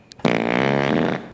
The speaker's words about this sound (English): The fart thing again, please.